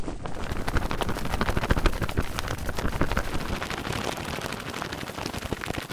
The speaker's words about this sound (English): Her wings, by the way, are it's a shirt. It's a cotton polyester blend shirt being flapped around like crazy and sped up a bit.